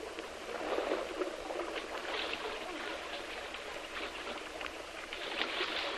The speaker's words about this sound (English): Fortunately, the water is quite deep, and with their keen presence of mind, they dive as they fall and strike the water in comparative safety.